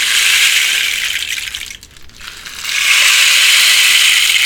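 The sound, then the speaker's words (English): A rain stick made from a dried cactus from Colorado, its cactus needles pouring out a steady, hissing patter of tiny rattling, fading briefly as it is turned over, then swelling back into a dense, bright trickle. “Rain stick.”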